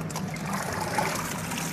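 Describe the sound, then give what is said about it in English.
Steady sloshing and trickling of water as cooked, nixtamalized corn kernels are rinsed by hand a few times, a continuous wet swishing with no voices. “Now, we can wash this, and we do. We rinse it a few times to get kind of some of that cal taste off of it.”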